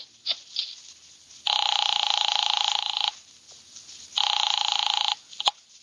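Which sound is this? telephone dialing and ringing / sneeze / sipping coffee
telephone dialing and ringing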